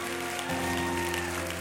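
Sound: audience clapping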